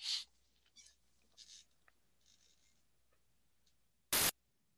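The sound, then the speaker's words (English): A fast radio burst signal played back: a short, very loud blast of static-like noise near the end, preceded by several faint, scratchy hissing bursts over a quiet background hum. “So that fast burst contains a message we just heard.”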